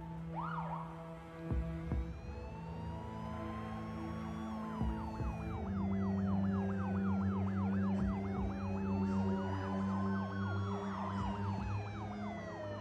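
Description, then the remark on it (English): Several police sirens from a squad of police cars arriving at a waiting plane wail and yelp over each other, their rising and falling tones overlapping as they grow louder and draw closer, with a steady low engine rumble underneath. “Queen and Slim walk toward a waiting plane with a pilot, but a squad of police cars arrives.”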